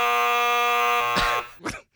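A loud, harsh studio buzzer that is still being worked out blares a steady, rasping tone for over a second, then cuts off into a couple of short noisy bursts before falling silent.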